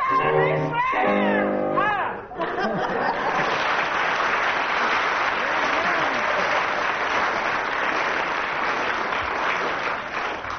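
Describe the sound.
A voice sings for about two seconds, then loud, dense audience applause breaks out with cheering and shouts, judging a contestant's singing, sustaining steadily until the end.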